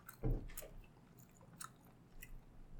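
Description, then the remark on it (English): Wet, squishy chewing of fatty Jamaican jerk chicken with mango chutney, opening with one loud bite followed by several softer, irregular mouth smacks and crackles, with no talking. “Chicken, very fatty.”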